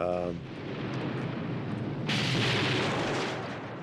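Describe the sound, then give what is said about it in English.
A low, continuous rumbling roar swells into a sudden, louder blast of crackling noise partway through as explosions blow out rooms one after another down a hallway, with a brief voice at the very start. “We were actually blowing these rooms and moving down this hallway.”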